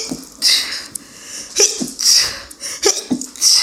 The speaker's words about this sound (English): Oh, I have to sneeze.